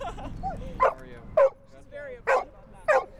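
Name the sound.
dog barking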